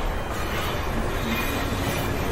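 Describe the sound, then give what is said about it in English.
A train pulls away along the rails in hot, dry weather, a loud, steady rumble and rush of wheels that holds constant throughout, with no voices. “Hey, where's the train going? Wait, can we stay on?”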